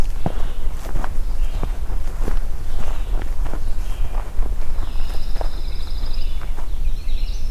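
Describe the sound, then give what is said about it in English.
A hiker's steady footsteps crunch along a trail at an even walking pace, each step a short scuffing thump, while a pine warbler's chirps and trills sound in the background. “Everything's picking up now as I'm stepping out of here.”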